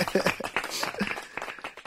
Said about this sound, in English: Let's clap it up for that. I like that.